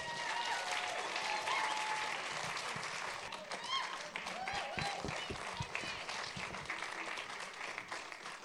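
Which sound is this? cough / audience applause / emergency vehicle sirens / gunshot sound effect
audience applause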